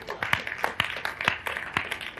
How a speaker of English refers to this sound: Clap your hands for God.